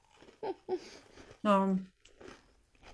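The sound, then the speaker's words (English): Someone crunches on a cookie: a few short, crisp bites and chewing noises, interrupted by a brief voiced hum in the middle, then softer munching continues. “You can hear me crunching on it.”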